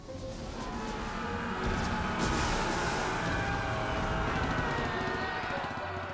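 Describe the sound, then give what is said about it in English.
A dense, continuous roar of attacking Japanese Zero fighter planes over a military base fills the scene, loud and unbroken, swelling slightly midway as the engines seem to pass overhead. “Then, without a definitive warning, the serenity was shattered by the roar of Japanese Zero planes.”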